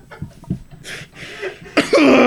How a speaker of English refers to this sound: No, I was just coughing.